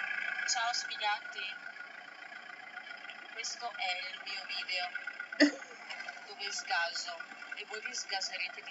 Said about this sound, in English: But she's literally revving the gas pedal. And she took off her shoe and now she's revving it some more. The car sounds like it's struggling.